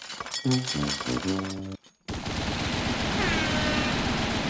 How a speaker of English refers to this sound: Speaking of gunshots.